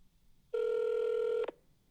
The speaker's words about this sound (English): So stand tight and listen to this phone call, and I hope y'all enjoyed it as much as we did.